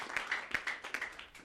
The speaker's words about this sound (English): Come on, give a clap offering to Jesus.